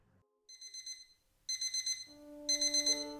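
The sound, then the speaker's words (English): A bedside alarm clock next to Howard's bed goes off, sounding rapid high-pitched beeps in three bursts that grow louder, a steady lower tone joining the final burst. No one speaks. “The alarm next to Howard's bed going off awoke me many hours later, forcing me from my rest.”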